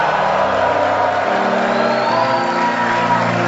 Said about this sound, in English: Give the Lord a shout of praise, of thankfulness.